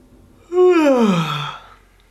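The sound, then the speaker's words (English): A single big, drawn-out yawn, voiced and breathy, its pitch sliding downward over about a second before trailing off into quiet. Fairly loud, with no talking. “You can try yawning, big yawn.”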